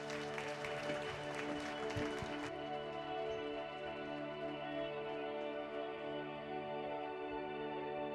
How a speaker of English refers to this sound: Would you guys give them a round of applause as they come up?